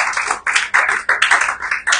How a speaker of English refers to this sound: Put your hands together for the Lord. Hallelujah. You're not clapping. Clap, clap, clap.